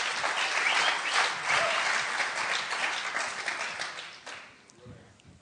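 A crowd applauds a man after a closing prayer, a dense wash of many hands clapping at once, staying loud for about four seconds before thinning out and fading at the end.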